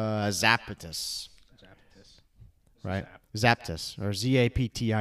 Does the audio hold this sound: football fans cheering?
no